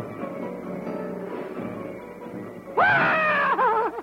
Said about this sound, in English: Hold it down. Oh, that's enough. That's enough. Reset that. What was that? Who's doing all that yelling?